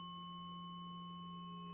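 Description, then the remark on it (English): A steady, pure low 174 hertz solfeggio sine tone hums continuously with no change in pitch, clean and moderately loud, with faint higher harmonics and no voices. “These are the sacred solfeggio tones. And I'm starting off at 174 hertz.”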